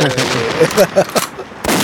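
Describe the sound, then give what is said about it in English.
A fireworks sound effect: a loud, rapid string of crackling bangs and pops bursting over a couple of seconds, ending in a sharp final blast, with voices faintly mixed in. “Give me fireworks.”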